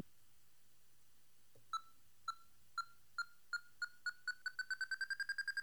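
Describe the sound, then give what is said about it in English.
A game buzzer sound effect in a word game: a string of clear electronic beeps that start slow and quickly speed up into a rapid run, loud, with no talking over it. “You just wanted to hear the buzzer, didn't you?”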